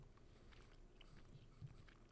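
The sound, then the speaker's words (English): Wet chewing of a soft chili-pepper-flavoured gummy candy, with repeated squishy mouth sounds and faint smacking in a steady rhythm over about two seconds, with no talking. “just chewed into it. It's a gummy.”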